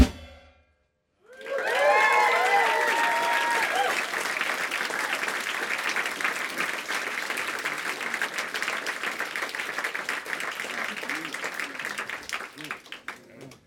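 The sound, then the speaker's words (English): After a moment of silence, a crowd bursts into loud, sustained applause with a few high whoops and cheers at the start, the dense clapping holding steady for about twelve seconds. “Well, okay, if you like the way you sound, then clap, man.”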